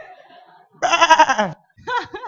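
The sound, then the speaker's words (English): A voice imitates a sheep with a loud, wavering bleat followed by a shorter second bleat, clear, after a faint low murmur. “And the little sheep was going, bah! Bah!”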